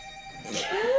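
A small burner phone rings briefly, a steady electronic tone followed by a brighter, rising burst, fairly quiet and heard on its own without any talking.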